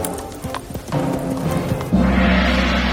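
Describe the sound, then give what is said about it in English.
Horse hooves clip-clop in a quick, uneven rhythm, joined by a brief whinny, then a louder rumbling surge as the horse, scared by a banged gong, gallops off, steady to the end. “This scared the horse and sent him running away.”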